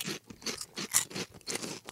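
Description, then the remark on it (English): Crisp crunching as someone chews Bonus brand Snack wow bacon pork rinds, styled to look like bacon, about four dry, crackly bites in a steady rhythm, each roughly half a second apart, with no talking. “And we're going to do that by eating these bacon chips.”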